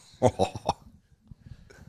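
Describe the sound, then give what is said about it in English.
A quick run of four harsh, loud coughs in close succession, trailing off into a quiet, low murmur of background noise. “I'm just waiting to make sure you don't cough again.”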